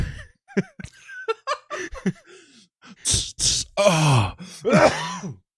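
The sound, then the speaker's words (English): A few loud, sharp sneezes burst out partway through, followed by strained, groaning vocal noises, after some earlier soft laughing and breathy sounds. “Sorry. Bless you.”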